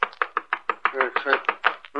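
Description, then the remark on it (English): A rapid, steady series of about a dozen sharp knocks on the door of a room just before daylight, evenly spaced and fairly loud, with a slightly hollow, resonant ring to each rap. “It was just before daylight when the knock came at the door of our room.”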